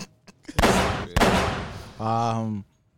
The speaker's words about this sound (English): You get one more gunshot.